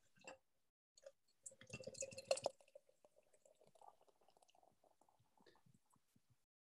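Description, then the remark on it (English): Hazy beer is poured into a glass: a short fizzing splash, then a steady gurgling stream with faint clinks and drips, fairly quiet, with no talking. “I think we need to get it poured, don't we?”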